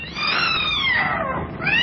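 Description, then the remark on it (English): A cat lets out a loud, drawn-out yowl as she launches herself to attack, its pitch bending up and down in a harsh, wavering cry that lasts nearly two seconds with no talking. “The cat launched herself, not at Malcolm, but at the luckless custodian. Her eyes blazed with ferocity.”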